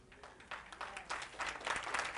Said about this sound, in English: I'm gonna wait while you all clap your hands because that's true.